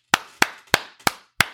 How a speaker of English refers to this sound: That's a round of applause. Thank you both very much.